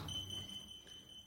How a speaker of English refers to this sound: If that alarm is squawking, it means the Nazis are back at it, blitzing Krieg some when in history.